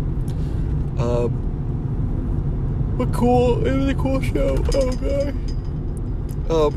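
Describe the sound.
Steady low rumble of a car cabin while driving on a cold day, constant and fairly loud throughout, with a person's voice speaking in short bursts over it.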